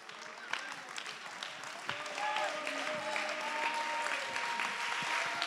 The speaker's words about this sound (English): Let's stand to our feet and clap our hands and give God all the praise.